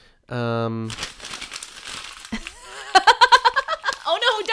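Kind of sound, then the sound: household object, paper being crumpled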